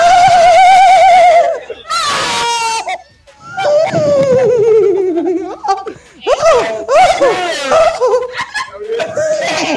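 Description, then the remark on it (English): Human voices imitate mating horses neighing and whinnying as part of a game, with wavering high-pitched vocal whinnies and snorts trading back and forth, loud, broken by giggling. “Imitate what your baby sounds like when horses are mating.”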